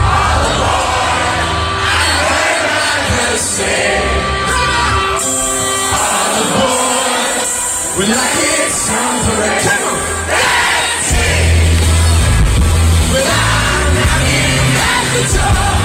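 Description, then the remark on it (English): A loud, dense crowd roars and cheers continuously at a concert, with yells and whoops rising over steady music from a live band playing its first song of the night, swelling louder toward the end. “This is you in the crowd. This is what you were hearing when they played.”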